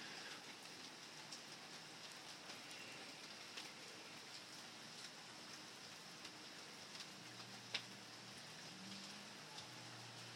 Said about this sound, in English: But it's raining, and I like that. Let's listen to the rain instead of me for a minute.